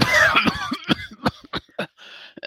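A run of short, dry coughs, several harsh bursts in an uneven rhythm with brief pauses between them and no talking.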